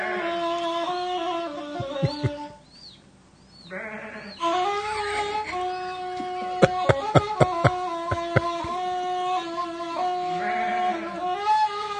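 A ney reed flute is played outdoors for a flock of plump sheep, long, wavering sustained notes, pausing briefly early on, with the sheep bleating in the mix and a run of sharp clicking taps midway through.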